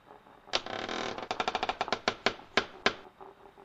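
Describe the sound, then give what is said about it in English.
Light, sharp knocking on a door: a quick, uneven flurry of about a dozen taps that slows into a few spaced raps before stopping. “A gentle rap, rap, rapping upon my podcast door?”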